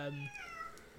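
A single drawn-out cat meow, fairly loud, starting low and then rising into a higher, gliding wail that fades away. No voices accompany it.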